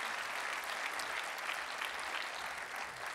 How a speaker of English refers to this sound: If you remember that moment, would you give him the biggest round of applause you've given him in a long time? Remember it.